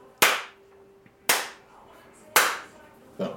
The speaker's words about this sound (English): I'm going to clap three times to make to give us a reference for all these mics to kind of know how they're going to time up together.